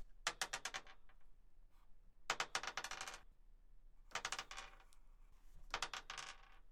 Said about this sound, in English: So, it is time for the first challenge, which now there will be a series of dice rolls, which I'm not going to read out until I've done all four, so that it actually makes some sort of sense.